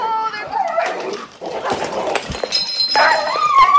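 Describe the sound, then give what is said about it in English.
A dog barks, yelps and whines frantically during a scuffle with a raccoon, a loud, chaotic stream of high-pitched cries and squeals with no pauses over a few seconds. “She lets the dog back in. I gave you a chance, animal. Oh, it's a raccoon.”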